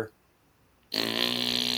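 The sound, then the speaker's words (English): A brief spoken lead-in, a short pause, then a loud, sustained buzzing raspberry as someone vocally imitates a long fart, continuing steadily without letup. “The guy farts for about 60 seconds.”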